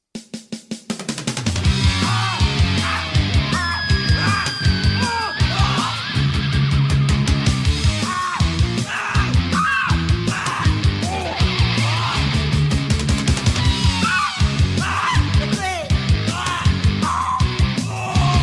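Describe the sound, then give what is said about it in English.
A loud, dense grungy punk rock song driven by a simple repeating riff, with pounding drums and distorted guitars after a brief quiet start; a raw voice shouts over the band. “It's this grungy, punky rock song. Again, another simple riff, simple percussion, all very standard stuff,”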